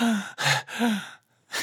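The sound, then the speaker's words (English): A voice imitates the breathless panting of the character Piskum, who ran all the way here: quick alternating voiced and breathy gasps in a fast rhythm, fairly loud, with a brief pause before another breath. “You see Piskum, like, panting.”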